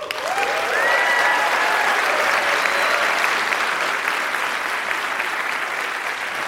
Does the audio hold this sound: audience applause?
yes